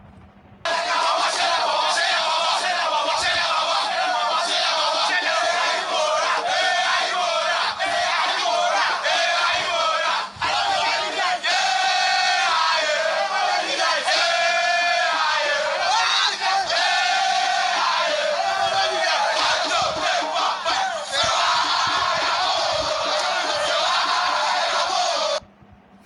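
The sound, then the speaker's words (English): A large crowd of students from Opokuare Wassce Senior High School in Kumasi cheers and shouts joyously after writing their paper, for about 26 seconds, a loud, continuous roar of many overlapping voices with rising yells and whoops throughout. “Okay, so these are students from the Opokuare Wassce Senior High School who are very joyous after writing their paper.”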